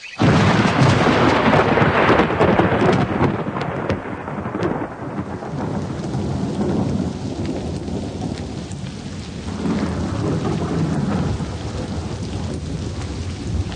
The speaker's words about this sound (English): It can't go on forever. It will. I know it will. It'll rain forever and ever.